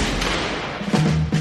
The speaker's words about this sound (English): But now we're feeling I think they build up on each other. Now we hear this huge, huge gunshot.